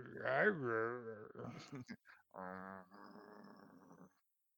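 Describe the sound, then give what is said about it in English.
A person's voice imitates the drowsy, grumbling growls of someone slowly waking up, in a few drawn-out bursts with short gaps between them, fairly loud, ending in a lower, rougher rumble. “But it's just gonna come out as like growls.”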